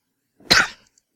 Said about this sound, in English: Had to hit my cough button there.